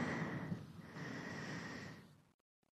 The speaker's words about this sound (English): You draw your hips back away from your hands. And then take a full breath. Lots of breathing today.